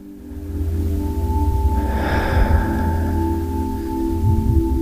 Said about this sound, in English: Just inviting you to appreciate the inhale. And as we appreciate something, it expands. And there's a natural relaxation and letting go.